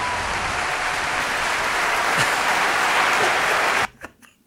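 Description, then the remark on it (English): A steady burst of crowd applause, dense and loud with many hands clapping at once, runs for nearly four seconds before cutting off abruptly into a few faint scattered sounds. “Come on, you gotta let the people applaud.”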